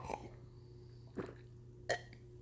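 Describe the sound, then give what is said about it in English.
Three short, soft gulping sounds spaced apart, like someone sipping and swallowing a drink, over a low steady background hum. “Excuse me, I had to take a sip of my drink there.”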